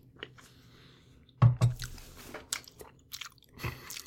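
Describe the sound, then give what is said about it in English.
Wet, open-mouthed chewing, with squishy smacks and a few crunchy bites in an irregular rhythm, the loudest burst coming near the middle, no talking. “I hate chewing with my mouth open so much.”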